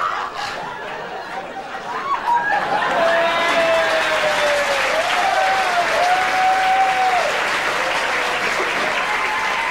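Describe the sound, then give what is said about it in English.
An audience of women breaks into sustained applause, dense clapping at a steady loud level, with scattered cheers and whoops rising over it and a little laughter mixed in. “All the women clapping.”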